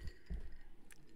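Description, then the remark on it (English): Two dull, low thuds of drink glasses slammed on a table during a toast, followed by a single faint, bright clink of glass, quiet with no talking. “Give it a little slam. Right. Cheers, folks. Cheers.”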